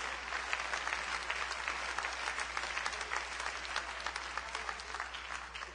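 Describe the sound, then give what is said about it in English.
Steady applause from a church audience during a service, dense overlapping hand claps filling the whole stretch at an even, fairly loud level with no voices standing out. “Give me a hand clap.”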